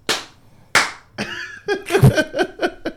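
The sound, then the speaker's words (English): Two sharp, loud slaps of a hand on a knee, about a second apart, followed by a man's hearty laughter with rhythmic breathy bursts. “He laughs like an old dad. Knee slapping.”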